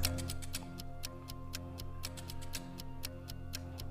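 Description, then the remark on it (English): A steady, rhythmic ticking runs throughout, evenly spaced clicks over a low sustained musical drone, a 60-second quiz countdown clock playing on its own with no voices. “60 seconds on the clock. Your time starts now.”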